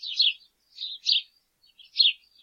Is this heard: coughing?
no